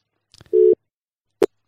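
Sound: telephone call tone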